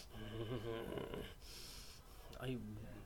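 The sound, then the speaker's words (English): Heavy breathing: wheezy, partly voiced exhales around a long, loud, airy breath, with no clear words spoken. “I don't know if they can hear your heavy breathing.”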